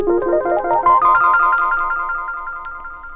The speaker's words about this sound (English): And here's the sound with the Echoplex. Now here's the same thing, but where the echoes, where the repeats are much faster.